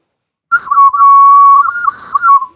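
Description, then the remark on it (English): A whistling vessel blown dry gives a steady, loud whistle tone lasting about two seconds, with slight warbles and wavering pitch near the start and end, then it fades out. “Because indeed, the instrument can be, you know, if you don't put water, you can blow on it.”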